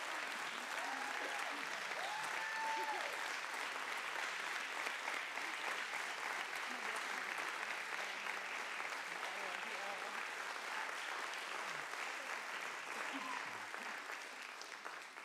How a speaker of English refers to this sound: And I know that today heaven is applauding you, and earth is too. So let's give her a great big round of applause this morning.